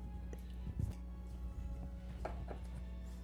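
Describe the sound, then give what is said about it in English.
Dice are rolled for damage in a game, rattling and clacking across a table in a few short, hard bursts, scattered clicks coming in two small clusters over a steady low electrical hum, with no talking. “So roll your damage.”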